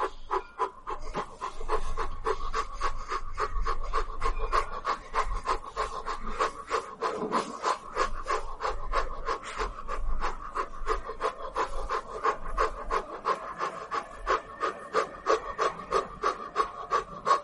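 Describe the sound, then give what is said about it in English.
Fast, rhythmic breathing in and out through the mouth at the start of a meditation practice, steady, with quick panting-like puffs repeating evenly for the whole stretch and no talking. “So let's begin with some quick breaths, breathing in and out like this.”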